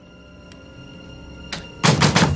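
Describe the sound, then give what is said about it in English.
A fugitive outlaw's fist bangs on a farmer's door: a lone thump, then a sudden flurry of loud, rapid pounding blows, with no voices. “See if you can picture this as dialogue between a saga farmer and a fugitive outlaw who has come banging on his door, pursued by something malevolent.”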